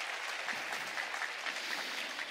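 An audience claps steadily, a dense wash of many hands with crisp individual claps popping through, sustained at an even loudness for a couple of seconds with no one speaking.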